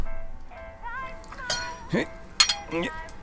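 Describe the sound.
Clinks and scrapes of something sharp poked under the rim of a glass bottle's stopper to pry it open, several sharp glassy taps ringing out irregularly over about two seconds, with a faint voice murmuring underneath.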